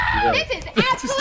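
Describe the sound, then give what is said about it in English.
A sudden high, strained scream rises out of excited voices in a played video from a cornhole tournament, its pitch sweeping up and down over about a second, loud and harsh against the chatter. “I like the random scream after she says that.”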